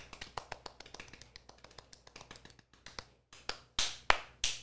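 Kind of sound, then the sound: crowd, golf clap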